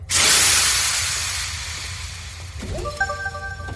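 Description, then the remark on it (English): A door unlocks, activated by a cycle button, with a loud burst of hissing air that slowly fades, followed by a cluster of short, bright tonal chimes near the end. No one speaks. “Eventually, I will put my paw over the cycle button to unlock the door.”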